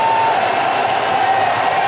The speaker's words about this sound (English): They just keep on cheering.